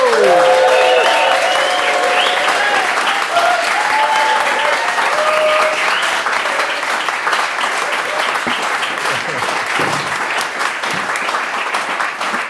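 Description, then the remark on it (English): Loud, sustained applause from an audience at the George Orwell Festival in the Marquis Cornwallis, welcoming Mark Steel; dense clapping fills the whole stretch, with whoops and cheers rising over it early on before settling into steady clapping. “So, ladies and gentlemen, please give great cheer and welcome for the one and only Mr.”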